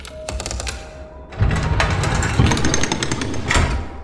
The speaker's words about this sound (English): The footsteps paused for a moment, and the racket of gears churning overtook the room.